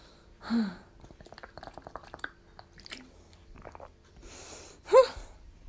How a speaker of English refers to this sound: But now it's time for me to drink some water because I'm so dehydrated.